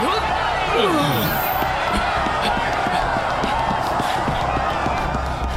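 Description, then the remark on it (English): A heavy crash as a door gives way, then hurried running footsteps pounding steadily through a loud, busy din, with voices mixed into the commotion. “This is our chance, you two. Break through the door!”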